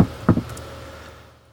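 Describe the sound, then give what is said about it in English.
A stone door drops into the ground after someone jumps onto a slab: a couple of heavy thuds followed by a low grinding rumble that fades away over a second or so, with no voices. “Okay, you hear, you know, a sort of stony tumble, and then the door recedes into the ground, because that one actually was a stone door.”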